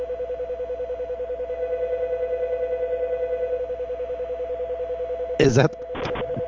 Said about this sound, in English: Is that the phone ringing? Oh my God, what's going on? Do you have any important question to ask? Because I have to take this call. Yes, I do. Why is the phone doing that? Why is it making that noise?